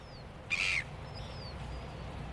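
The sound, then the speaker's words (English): A single loud, harsh gull squawk rings out, with fainter cries from a flock of seagulls over a steady low outdoor rumble, on the banks of the Porirua stream on a cloudless afternoon. “It's a cloudless afternoon on the banks of the Porirua stream, complete with a flock of seagulls.”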